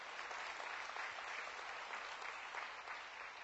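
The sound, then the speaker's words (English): A crowd of people at a sermon applauding to praise the Lord, a dense wash of many hands clapping at once with no individual claps standing out, sustained and fairly loud throughout with no one speaking. “Put your hands together and clap the Lord for that.”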